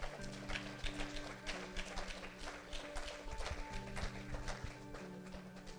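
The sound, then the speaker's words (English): A crowd claps hands in praise to the Lord, a dense, steady patter of many hands, with sustained organ-like chords playing underneath and no voices rising above it. “Come on, give the Lord a hand clap of praise if that's you.”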